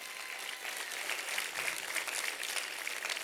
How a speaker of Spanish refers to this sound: Si tú lo crees, dale una mejor ofrenda de aplausos.